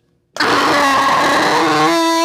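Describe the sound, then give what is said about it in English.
A voice imitates Godzilla's roar: one loud, raspy, sustained bellow lasting about two seconds, with a grinding, engine-like texture that ends in a short rising tail. “Let's do it, but I want to try the Godzilla roar. I feel like the Godzilla roar is this.”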